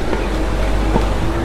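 A large truck rumbles past on a narrow street, its deep, steady engine drone loud and continuous, with a faint tonal hum riding on top of the heavy low roar.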